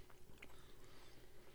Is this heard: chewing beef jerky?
yes